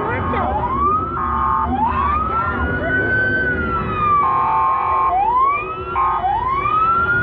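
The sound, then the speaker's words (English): A loud siren from a police pickup truck driving through a crowd wails in repeated rising sweeps, punctuated by blaring horn blasts, over a dense background of crowd noise and rumbling. “A truck coming in with sirens.”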